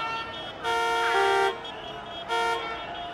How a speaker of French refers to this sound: Pour les voitures, nous sommes des indésirables. Alors, ils klaxonnent.